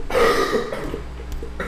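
A person gives one rough, throaty cough, a loud burst lasting about half a second, then it trails off into quieter sounds before a brief second push at the very end. No talking.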